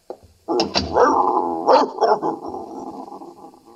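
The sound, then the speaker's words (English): A dog growls in a low, sustained rumble, with a couple of sharper snarling bursts rising out of it before it trails off into a steady grumble. It is Mrs. Gillis's dog, a female that is getting old and peevish. “I don't think your dog likes me, Mrs.”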